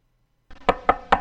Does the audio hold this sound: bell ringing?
no